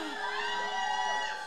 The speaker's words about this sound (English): Baddies, where you at? No, really, more people should have been cheering.